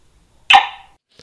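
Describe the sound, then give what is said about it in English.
Abby, a cattle dog in central Missouri, USA, gives one sharp, loud bark to say hi, ringing briefly before fading, with quiet before and after and no one speaking. “Abby, my cattle dog and safety consultant co-host. Say hi, Abby.”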